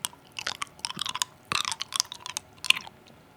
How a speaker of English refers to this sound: if you can guess the flavor of the cough drop that's in my mouth right now, just by the noise it makes in my mouth.